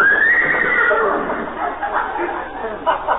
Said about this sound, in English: Oh, that's that Great Dane that belongs to the people next door. Great Dane? Sounded like a horse to me.